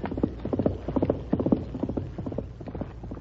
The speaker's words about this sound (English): Listen. Someone's coming at a gallop beyond the bend.